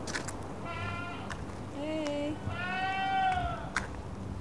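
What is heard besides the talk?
goats bleating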